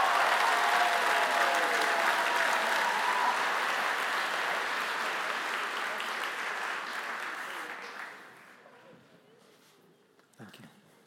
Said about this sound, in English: Let's applaud them as they leave the stage.